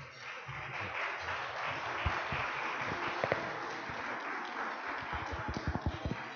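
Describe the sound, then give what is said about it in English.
An audience at a lunchtime talk applauds steadily, a dense wash of many hands clapping with sharper individual claps popping out toward the end; no one speaks over it. “It is encouraging that people clapped because I didn't think I could really compete with lunch.”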